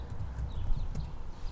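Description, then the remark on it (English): Keyboard typing, a quick, uneven run of soft clicking keystrokes over a steady low rumble, with no one talking. “I think you might be able to hear me typing.”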